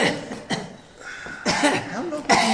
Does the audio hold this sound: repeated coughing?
yes